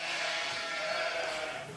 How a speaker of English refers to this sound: Excuse me, why is your inn suddenly full of sheep? Oh, they've got in, have they?